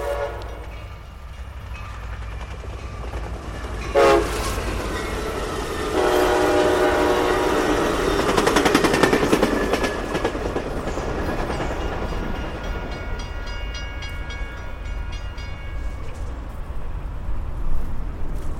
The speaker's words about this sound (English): Yep, that was it. 10 seconds to measure, and then all over. When I checked in with them later, they told me that even though the train was moving pretty fast, because it doesn't go by all that often